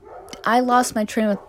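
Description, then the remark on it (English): Dogs bark in a quick run of three high, yelping bursts, fairly loud, with no talking over them. “There are always dogs barking.”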